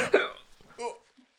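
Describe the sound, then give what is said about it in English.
Two sharp, voiced hiccups about a second apart, each a sudden gulping yelp with a quick airy tail, followed by a faint short murmur. “Oh no, it's the hiccups.”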